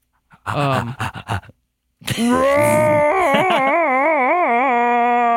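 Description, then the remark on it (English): A person imitates a monkey: a quick run of breathy, rhythmic hoots, a short pause, then a long, loud wavering howl whose pitch wobbles up and down. “Oh, okay, wait, y'all want monkey noises?”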